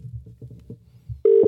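Faint low rumbling gives way to a loud, steady telephone ringing tone of an outgoing phone call that starts abruptly near the end and holds as a single sustained pitch, clear.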